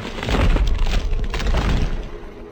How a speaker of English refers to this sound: Andy swung the shovel, but as he connected, a small explosion sent him back.